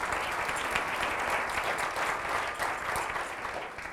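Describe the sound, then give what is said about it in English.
An audience at a TMI event celebrating 125 years since its founding in 1893 breaks into a sustained round of applause, dense overlapping clapping holding steady and fairly loud for about four seconds, with no voices standing out. “That deserves a round of applause. You can clap for that.”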